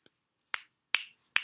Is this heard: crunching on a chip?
no